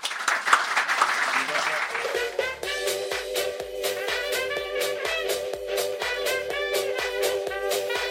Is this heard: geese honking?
no